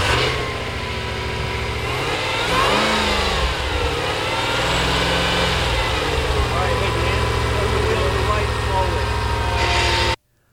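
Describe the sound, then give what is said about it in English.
A big 700-horsepower Hellcrate V8 crate engine fitted in an old Jeep M715 rumbles loudly, revving up in a couple of swelling throttle blips around the middle before settling back to a heavy, steady idle that cuts off abruptly. “That's a Hellcrate. Oh, wait, it is? Yeah, 700 horsepower Hellcrate sitting in a M715.”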